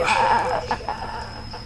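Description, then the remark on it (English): A voice imitates a puppy with high, whiny whimpers and little yips, fairly loud, in one short wavering run with no other talk. “It's a puppy.”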